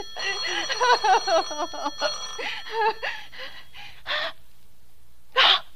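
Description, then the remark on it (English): A telephone rings in warbling, trilling bursts, a long ring followed by shorter ones with pauses between, fairly loud and with no one speaking. “Let it go on ringing.”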